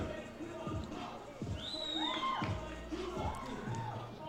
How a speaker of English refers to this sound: Chase, you could probably hear his fan club cheering just there with the crowd mic.